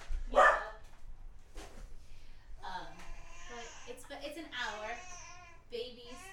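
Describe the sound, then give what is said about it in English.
A dog lets out a sharp, loud bark and then a shorter second one, followed by a young boy's high, babbling voice chattering continuously. “Yeah, babies, dogs, but yeah, it's my son.”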